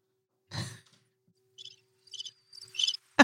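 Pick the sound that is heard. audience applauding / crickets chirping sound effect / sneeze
crickets chirping sound effect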